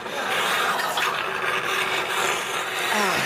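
A saliva suction vacuum hisses and rasps steadily for a few seconds, a loud, continuous airy roar with a gurgling, rough texture and no pauses.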